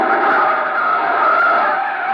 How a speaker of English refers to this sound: Jam on the brakes.